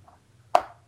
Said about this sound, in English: Yeah, so that's the noise of me counting out coins.